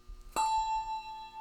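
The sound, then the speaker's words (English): A single Whitechapel handbell, one of the instruments rung in a handbell choir, is struck once, giving a bright, clear ringing tone that sustains steadily with rich overtones for over a second, alone with no talking. “And then the final bell, which is our newest addition here, are the Whitechapel handbells.”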